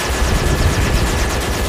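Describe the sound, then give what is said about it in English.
A loud, sustained explosion rumble, deep and crackling, with rapid rough bursts running through it for under two seconds and no voices over it. “Is he thinking that it's like a fart, not an explosion? But that could be a fart. Yeah, but it was an explosion.”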